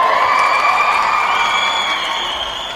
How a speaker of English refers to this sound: Don't usually see a crowd this excited during wordplay